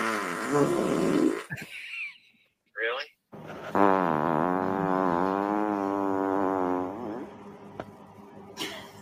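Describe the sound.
A long, loud, buzzy fart stretches for several seconds with a wavering, rumbling pitch, preceded by a few quick bursts of voices and a short spoken exclamation.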